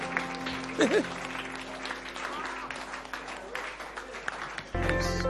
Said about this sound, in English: Please, let's rise. The clapping is free.